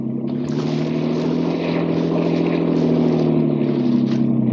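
A motorboat engine drones loud and steady at full throttle, its low harmonic roar mixed with a rushing hiss of spray as the boat races across the water.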